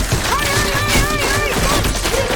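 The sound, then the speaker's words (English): A meteor shower in a game, announced by a card, pounds down in a loud, dense barrage of crashing impacts that never lets up, with wavering whistling tones rising and falling over the continuous rumble. “The game seems pretty advanced, though they don't yet know how advanced, as the card says, prepare for a meteor shower, and that's exactly what occurs.”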